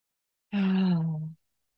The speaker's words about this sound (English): Taking your last deep breath in through your imaginary straw. And breathing out loudly through the mouth.